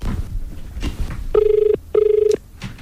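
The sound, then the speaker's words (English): A telephone rings twice in a steady double burst, each ring a buzzy tone of about half a second, heard clearly as if through a handset on an outgoing call. “Let's give her a ring.”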